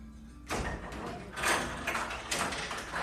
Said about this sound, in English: Okay. All right. Can you open the door?